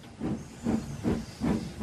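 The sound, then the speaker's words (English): Thomas the steam engine chuffs away to fetch his coaches in a steady rhythm, about four breathy puffs of hissing steam over a low mechanical rumble, with a faint high tone drifting above. “And he huffed away to fetch his coaches.”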